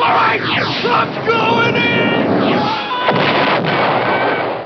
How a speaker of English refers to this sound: Star Wars, it's great in the arcade. Whoa! TIE fighters, fireballs coming right at me.